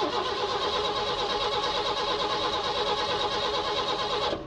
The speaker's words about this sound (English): he just keeps laying on the engine over and over, and they have real noises. They have real engine noises of engines sputtering.